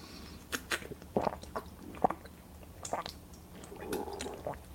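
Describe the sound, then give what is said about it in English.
Quiet mouth sounds of someone sipping water on a hot day: a series of small wet clicks and slurps with a soft swallow, no talking, over a faint steady background hum. “Sorry, it's hot. I got a little water in here.”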